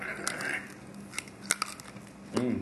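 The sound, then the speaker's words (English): Crisp crunching bites on lamb crackling, a handful of sharp, irregular cracks spread over a few seconds, with a brief murmured voice sound near the start and again at the end. “And I think the only way to do it is with a bit of crackling.”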